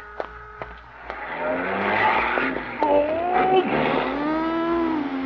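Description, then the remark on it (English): A car's tires screech loudly, a shrill wavering squeal that rises and bends for several seconds as the vehicle skids to a stop on a street as a pedestrian crosses, after a few sharp knocks at the start. “A lot of traffic today. Four cars and a bicycle. Guess I'll cross the street here.”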